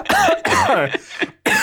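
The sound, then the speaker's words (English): A deliberate, half-forced cough, half real and half fake: several harsh, throaty bursts in quick succession, loud, with a short pause before a final burst. No speech accompanies it. “That is a half shade cough.”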